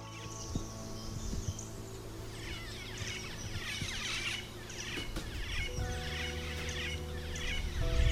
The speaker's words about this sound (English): So to listen to the call of a black-faced cuckoo shrike, and then once you're used to that call, you'll notice that it happens each year because these birds are migratory. They come into Australia at this time.